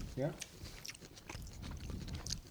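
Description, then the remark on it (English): Crunchy chewing of Polish salad, a steady run of crisp, crackling bites with a brief murmured vocal sound at the start. “It's got more crunch than the beets, but I'm pretty much out of beets.”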